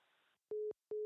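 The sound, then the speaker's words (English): A brief burst of static cuts off, followed by two evenly spaced beeps of a steady electronic tone, the repeating pulse of a phone busy signal after the other caller hangs up. “has hung up the phone.”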